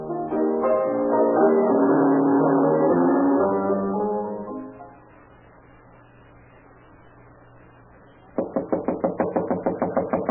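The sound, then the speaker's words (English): After a swelling musical tone fades into a low hum, someone pounds on a door, demanding that it be opened, a rapid run of loud, evenly spaced heavy knocks that keeps going to the end. “Get up and open this door.”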